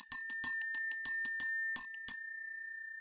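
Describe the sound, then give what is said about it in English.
A bell rings in a quick, steady series of about a dozen bright strikes, fairly loud, then its clear metallic tone lingers and fades away. No one speaks. “So have you got your bell? I have my bell. Ring that bell, girl.”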